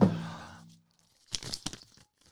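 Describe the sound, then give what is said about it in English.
A slip of paper drawn from a glass jar and bearing a random word is unfolded, a few crisp crinkling rustles in quick succession, preceded by a short fading ringing tone, with no voices. “Let's see what's on this bit of paper here.”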